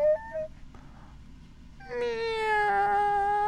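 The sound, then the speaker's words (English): A person's voice imitates a cat crying out: a short, faint mew, a pause, then a long, drawn-out meow with a wavering pitch, clear over a low background hum. “I know you're doing a cat, but because we're talking about sexual things, that made me very uncomfortable.”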